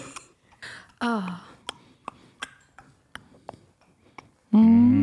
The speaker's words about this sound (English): I can hear the clock.